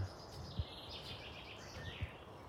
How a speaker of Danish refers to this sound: De har faktisk en ret vild sang. Måske den rødkalk, vi kan høre der.